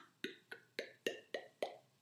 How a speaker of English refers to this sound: Hey, listen, this is wine coming out into a glass.